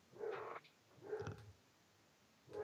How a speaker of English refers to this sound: Boy, your dog is loud barker. He is. He's very. He's small but powerful because he's. It's more of this like, basset hound, howl.